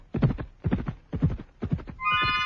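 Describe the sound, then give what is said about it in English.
Great horses gallop in a steady rolling rhythm of thudding, earth-shaking hoofbeats, and a high, shrill neigh rings out over the pounding near the end. “They could keep it up for hours, that ponderous, earth-shaking gallop.”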